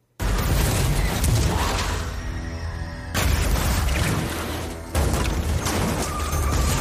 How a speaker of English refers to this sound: So as you can tell, that sounds like a car crash. Well, that's because there's this lady doing makeup. And for no reason, Tom Cooper decides to ram the back of her car.